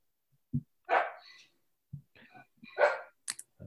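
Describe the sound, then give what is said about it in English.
A dog barks at a food delivery in two loud, sharp bursts about two seconds apart, with softer yips and whimpering sounds in between, with no talking. “Sorry, dog is barking because we got food delivered.”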